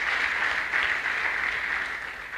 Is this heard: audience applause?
yes